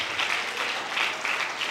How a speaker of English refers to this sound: Well, let's clap our hands to the Lord Jesus and give him all the praise and all the glory. Hallelujah.